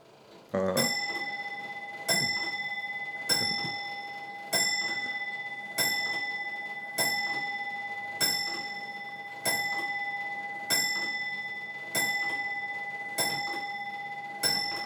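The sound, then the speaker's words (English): A clock chimes, striking about twelve times at a steady, unhurried pace, each bright metallic strike ringing out and fading before the next, clear with no one talking. “Well, it had to be the longest chime, didn't it?”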